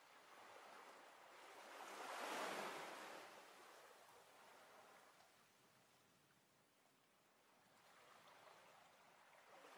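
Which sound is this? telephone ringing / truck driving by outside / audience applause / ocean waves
ocean waves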